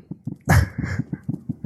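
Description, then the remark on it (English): A dog pants in quick, steady bursts, breaking off for a louder whining whimper before the rapid panting resumes, fairly loud with no talking. “Oh, there's a key, and then a dog's gonna bite us on the butt, and then there's gonna be another key?”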